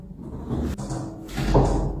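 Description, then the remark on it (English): A heavy metal cell door of a condemned cell swings shut with a grinding scrape and a low, booming thud, its deep resonance lingering as the latch settles. “And what an ominous sound that door is.”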